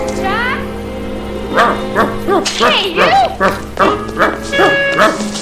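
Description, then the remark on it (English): A dog lets out high whimpering whines followed by a series of short, yelping barks, while a man speaks briefly over the noise. “There's something wrong with this dog.”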